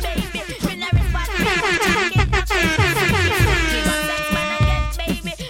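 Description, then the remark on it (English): Loud, busy Jamaican party music plays throughout while blaring air horn blasts cut through, the longest one held steady near the end. “Jamaican party is gunshots and air horns.”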